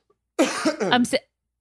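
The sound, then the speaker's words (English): A voice mimics a cough: a short, throaty burst of rough, voiced hacking lasting under a second, fairly loud, with brief silence before and after. “With the cough. Ew.”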